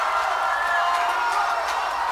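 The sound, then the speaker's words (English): A dense, steady wash of fake crowd cheering added to a recording that is not live, filling the whole stretch at even loudness, like a large audience roaring continuously without clear individual voices or claps. “Like, honestly, I would have actually enjoyed this more had you taken out the fake crowd noise and put in some weird B-movie sci-fi noises.”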